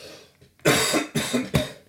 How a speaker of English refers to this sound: Love having a cough on the podcast. That's a fantastic thing.